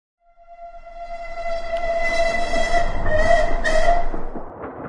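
A steam train rumbles along the rails while its whistle sounds one long, steady note, the noise swelling louder over a few seconds. No one speaks.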